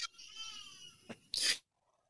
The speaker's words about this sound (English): You got a baby crying. Hold on.